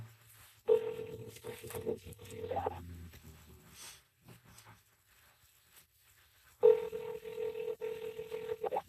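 A phone line ringing out: a steady electronic ring tone sounds for about two seconds, falls silent for several seconds, then starts again. No one speaks.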